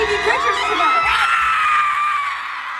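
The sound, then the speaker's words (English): A single voice imitates a concert fan's shrill, sustained scream, wavering in pitch for about three seconds, loud with no other talking. “Like, I have a sore throat just from doing that one little yell.”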